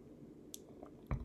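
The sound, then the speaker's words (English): A soft sip of coffee: brief wet mouth noises and a small slurp, followed by a gulp-like thump near the end, with no talking. “Excuse me, as I take a sip from my coffee.”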